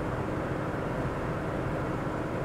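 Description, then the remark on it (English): A steady, dense engine drone with a low rumbling hum and broad road noise, holding constant without breaks, from a 1983 Mercedes-Benz 300D turbo diesel cruising on a road trip out of Rhode Island as it nears 250,000 miles. “On this car, this 1983 Mercedes-Benz 300D turbo diesel, built in Stuttgart, Germany.”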